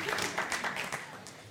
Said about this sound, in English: Let's give him a round of applause. What a legend.